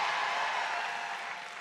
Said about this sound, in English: Come on, clap like God has the power to heal.